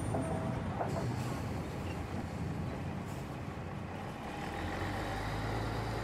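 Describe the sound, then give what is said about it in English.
A busy metro station, Guadalupe MRT3 station, on Holy Wednesday: a constant heavy rumble of rail traffic and machinery, with a deep engine hum swelling near the end and no clear voices standing out. “That clip was taken at the Guadalupe MRT3 station on Holy Wednesday.”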